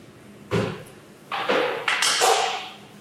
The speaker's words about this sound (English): So she's using a chisel to try and peel back the top of the skull now that she has sawed the lines. And she's got a hammer to help her get in further where needed.